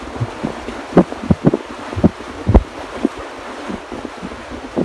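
Strong wind roars steadily against the microphone, with irregular gusts thumping and buffeting it, over a faint rushing wash of surf with good-sized waves at a seaside breakwater. No one speaks.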